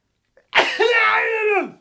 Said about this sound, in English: What was that? What happened? That's how he sneezes.